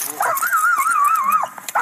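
A police dog lets out a long, wavering high-pitched whine, fairly loud, bracketed by short excited yips at the start and end, over a steady background hiss, as officers arrest a suspect.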